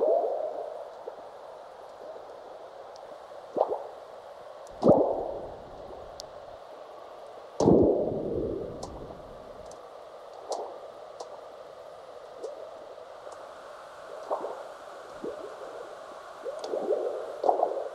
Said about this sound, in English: The sounds come from seismic recording stations in North America and Central Asia. Frog-like burps you can hear are earthquakes, large ones followed by the chirps of aftershocks.